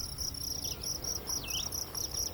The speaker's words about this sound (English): Kind of cool to hear the crickets. You don't hear them much in the daytime. I don't know why. Sometimes you do, and sometimes you do not.